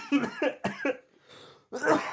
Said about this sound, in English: I'm sorry guys, I might be coughing for, I think I might have a lung problem. There's something going on.